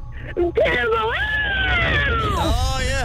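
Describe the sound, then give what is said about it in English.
A person lets out a brief yelp, then a long, loud, wavering scream in mock panic, freaking out and yelling for as long as they can, rising and falling in pitch for a couple of seconds, alone. “You just freak, yell, scream for as long as you can.”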